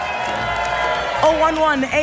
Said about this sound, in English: Ladies and gentlemen, round of applause.